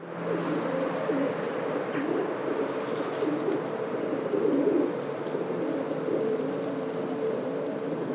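Pigeons coo in a steady, overlapping murmur, several birds making soft throaty warbles that run continuously with no pauses and no voices.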